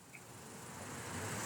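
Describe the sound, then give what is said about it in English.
Cars whoosh past on a city street in a steady, hissing rush that gradually swells louder as a car approaches, tires rolling on the pavement and engines gently whirring. No voices, just the wash of tires on pavement. “Cars whoosh by to my right, tire friction emitting an audible tacking as the rubber rotates upon the pavement.”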